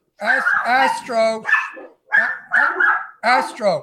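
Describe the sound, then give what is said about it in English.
A dog barks at someone riding by on a bicycle, a loud, excited string of high, yelping barks, grouped in quick bursts with brief pauses between them. “Stop that barking.”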